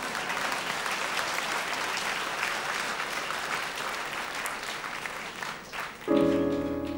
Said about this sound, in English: Well, come on, clap, damn it, what's wrong with you?